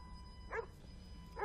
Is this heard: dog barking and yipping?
yes